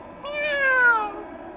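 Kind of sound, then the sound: animal, cat meowing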